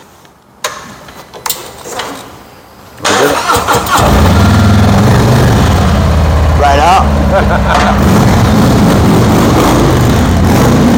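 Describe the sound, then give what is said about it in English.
After a few soft clicks and a brief spoken phrase, the engine of a brand new Triglide motorcycle trike starts at about three seconds and settles into a loud, deep rumble, revving up briefly midway. “I appreciate getting me this brand new Triglide to spend some time with.”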